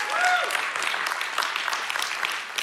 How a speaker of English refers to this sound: So I believe that's worthy of a little bit of applause, what we're able to do.